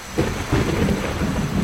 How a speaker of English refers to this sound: There are thunderstorms in the Amazon.